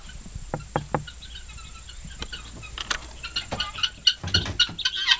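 A few hollow knocks, then a flock of guinea fowl coming out of their house breaks into harsh, rapid, scratchy calls that grow denser and louder, with no talking.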